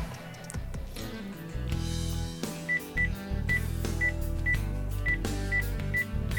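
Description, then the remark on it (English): A phone number being dialed: a steady run of short, evenly spaced electronic keypad beeps, around eight of them, clearly audible over dense, loud background music. “Let's get on the horn, then.”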